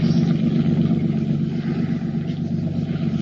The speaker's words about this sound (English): The boat's going away, I think. Aye, it is. It's a pleasure craft.